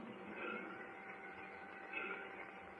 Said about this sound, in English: What's that? Well, I believe it's a train. Why, you're right. We're at the railroad station.